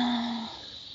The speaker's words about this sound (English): Speaking of, if you can't hear that. Our night jars across the way. Mm-hmm. I hope you guys can hear it.